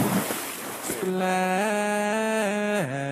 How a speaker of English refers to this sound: Splash.